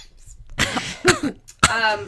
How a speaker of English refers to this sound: When I laugh, I cough.